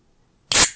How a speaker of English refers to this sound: We're going to open up a beer.